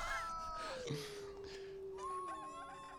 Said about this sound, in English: Turn up the foxes. This is fantastic.